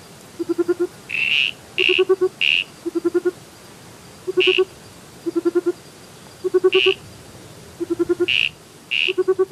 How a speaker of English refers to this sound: The second call, the soft owl-like triple note call, is from the federally listed giant burrowing frog, Helioporus australiarchus. These guys are pretty large, they're awfully round, and they reach about 6 to 10 centimetres